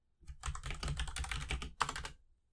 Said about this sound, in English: Oh, give me a second on my clacky clacky keyboard.